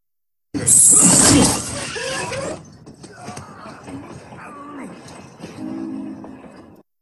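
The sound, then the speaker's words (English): Characters slide off a train: a loud, harsh rushing scrape lasting about two seconds, then quieter metallic rattling with wavering, sliding tonal squeals and short vocal-like sounds that fade out. “It's when they slide off the train, but yeah, it's close enough.”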